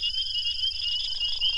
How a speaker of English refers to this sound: shared this recording of the dusky gopher frog's snoring croak from a pond in Mississippi, where thousands of captive-bred frogs have been reintroduced in the past few years.